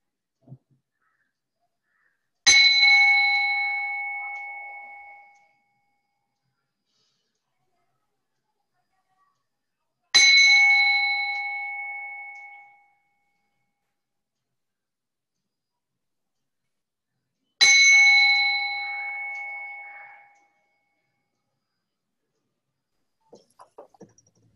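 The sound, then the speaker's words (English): A meditation bell is struck three times to begin a mindfulness of sounds practice, at slow, even intervals, each clear ringing tone lingering and fading out completely before the next strike, with silence between. “So I'll ring the bell 3 times and then we will do the mindfulness of sounds practice.”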